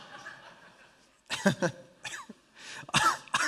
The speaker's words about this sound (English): I need to cough and I've been sick a lot. Anyway, no corona, negative, but I'm positively negative.